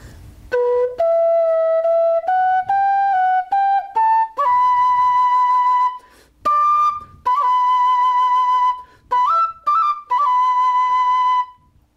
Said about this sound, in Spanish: Bueno, básicamente el sonido es el mismo, ¿no? Es cuestión de gustos. A mí me gusta más esta quena en particular que la otra, pero el sonido básicamente es el mismo. Escucha.